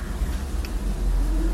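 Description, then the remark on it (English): An automatic car wash soaping a car, heard from inside the car as a steady low mechanical rumble with a continuous washy hiss that swells slightly louder toward the end, while the car moves gently from side to side and soapy water covers the rear window. “It's soaping the whole car up now.”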